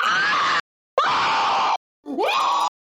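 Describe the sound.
Three loud, raw screams in quick succession, as if someone is being vaporized, the screamer starting close to the mic and backing away; harsh, each held for under a second and then cut off sharply, with brief silences between them and no talking.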